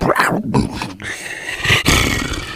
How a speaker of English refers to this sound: So strong. Close to Disneyland Paris. Strong cat noises.